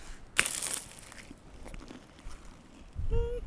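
Crisp paper crinkling as a pasty with a small paper label stuck to it is unwrapped, a loud burst early on, then softer scattered rustles and crunches, ending with a brief squeaky handling sound. No one speaks.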